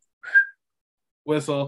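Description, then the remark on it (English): One short, sharp whistle blast like a referee's, apparently whistled by mouth as an imitation, then a moment of silence before a voice speaks briefly. “Whistle.”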